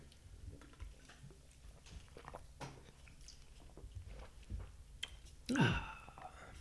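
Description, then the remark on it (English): Quiet mouth noises of someone sipping alcoholic ginger beer from a can: soft slurps, wet clicks and a swallow, ending with a brief voiced 'ahh'-like sound near the end. “Yay, I'm going to have one final sip, I think, to collect my thoughts.”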